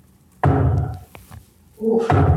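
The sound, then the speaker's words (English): Large dice, called Titanic dice, rolled for attack rolls in a game hit a table with a heavy, hollow thunk and tumble with a low rumbling clatter, then a second loud roll of thuds follows after a short lull. “You're rolling these Titanic dice. It sounds like just like...”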